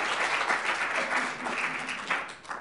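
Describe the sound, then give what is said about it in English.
A crowd breaks into steady, sustained applause, many hands clapping together in a dense wash of sound that stays fairly even throughout. “And that should really be a round of applause for the Academy's assistance with that.”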